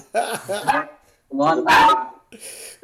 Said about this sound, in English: That's friendly dog back there. Very sorry for the interruption.